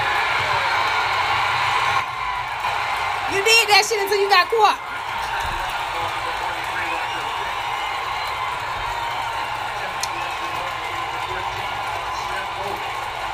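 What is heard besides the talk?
audience applause and cheering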